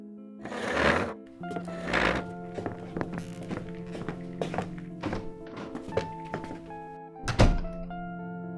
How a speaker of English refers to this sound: Did you have to slam the door?